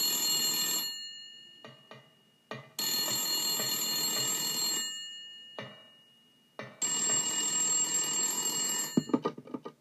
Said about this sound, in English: And the phone rings at one place, you pick up the phone, and then it's just like...